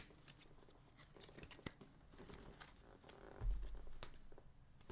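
A deck of tarot cards being shuffled, a soft, continuous papery riffling and crackling with a few sharper flicks, no voices.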